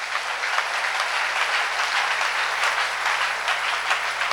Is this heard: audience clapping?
yes